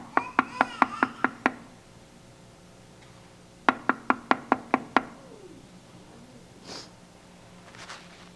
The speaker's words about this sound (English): I'm at the door. I'm knocking. If anyone hears my voice. So I get the idea. He's not just knocking.